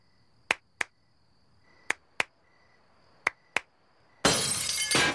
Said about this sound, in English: Just cutting outside and showing the window shattering with the lamp flying out of it is just so funny.